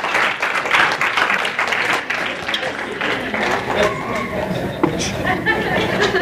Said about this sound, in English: So thank you. Let's give him a round of applause for that demonstration.